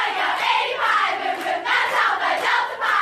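In a sorority recruitment video, the Alpha Delta Pi sisters at the University of Texas at Austin, stacked like a pyramid, chant loudly and excitedly. Their voices blend into a steady, high-pitched crowd roar, with a few sharp claps cutting through over about three seconds.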